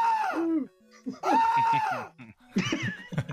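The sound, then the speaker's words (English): Two loud, drawn-out celebratory screams for a quiz game champion in quick succession, each sliding down in pitch at the end, followed by a short burst of excited voices. “That's what we like to give our champions, the double we're scream.”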